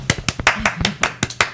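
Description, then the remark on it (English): A small audience, asked by the host to clap, claps in sharp, fairly regular bursts, about eight or nine distinct claps, moderately loud over a faint low hum, with no one speaking. “Everybody clap.”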